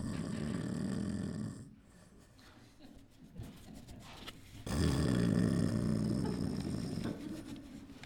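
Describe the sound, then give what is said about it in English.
A person imitates Jesus snoring while sound asleep, with two loud, drawn-out rasping snores separated by a quieter, breathy inhale. “And Jesus is over there snoring like nothing's going on.”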